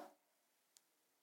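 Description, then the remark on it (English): A single small, sharp click from a presentation clicker, quiet, sounding once in near silence just after a brief fading sound at the start. “I forgot that I'm supposed to be clicking.”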